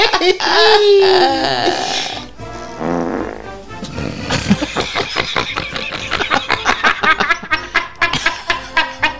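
A drawn-out, loud real fart, not a faked one, with a rough, sputtering texture, shifting in pitch before ending in a rapid run of short flappy bursts.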